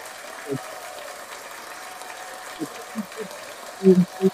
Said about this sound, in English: We'll give a round of applause to God for that.